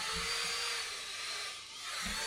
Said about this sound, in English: No, it's actually, you know, it's a computer duster. They don't like the noise, so distracts them when they're fighting.